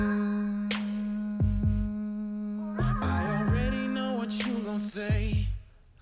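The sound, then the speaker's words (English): A person hums one steady, sustained note, asked to be the tonic G but sung as an A, holding for several seconds, while deep kick-drum thumps from a song land underneath at uneven intervals. “listen, like hum the kind of eutonic. Hum the G.”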